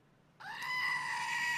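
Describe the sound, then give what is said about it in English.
A screaming goat toy lets out one sudden, loud, sustained bleating shriek that starts abruptly and holds steady to the end, with no talking over it. “So we didn't have any goat screaming today.”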